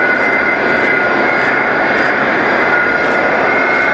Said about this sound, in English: So after that, it rolled out, and the engine noise from that is pretty spectacular. If you take a listen to it really quickly, you can just hear how loud it was.